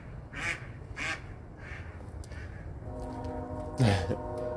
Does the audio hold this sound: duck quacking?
yes